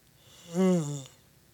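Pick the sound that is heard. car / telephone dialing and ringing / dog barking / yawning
yawning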